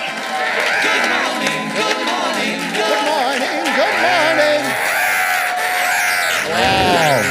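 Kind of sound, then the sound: crowd, audience cheering and screaming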